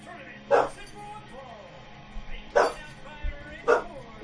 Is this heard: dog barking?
yes